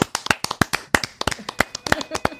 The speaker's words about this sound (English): May I nominate … for the big clap? Absolutely. Which is something we occasionally do. Let's do it. I think she deserves it. She definitely had the better video. Let's hear it for …. And clap it up.